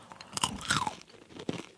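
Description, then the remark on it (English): Someone taste-tests granola with clusters, crunching it in a few crisp, irregular bites, each a brittle burst of crackling, with quieter chewing between them and no talking. “This is the granola.”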